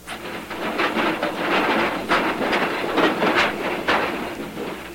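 A goods train rolls steadily along the rails, a dense rumble broken by recurring metallic clacks from the wheels passing over track joints, with no voices.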